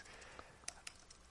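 A few quiet, irregular clicks of typing on a computer keyboard as someone fixes a typo, four or so keystrokes tapped out slowly over a faint background hiss, with no voices.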